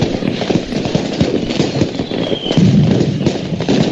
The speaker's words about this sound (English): Now you stand up and you salute, and we're going to celebrate these fireworks together.